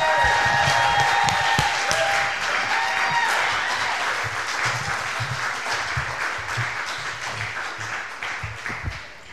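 An audience at the Push Comedy Theater bursts into sustained applause with scattered cheers and whistles as a comedian is introduced, a dense wash of clapping that stays loud before gradually easing off toward the end.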